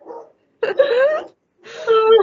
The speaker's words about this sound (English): Can you hear my dogs, by the way? Yeah. Oh, my gosh. I think Amazon might be here.